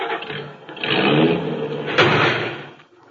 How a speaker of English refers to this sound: Oh, how do you like that? That parked car ran right into us.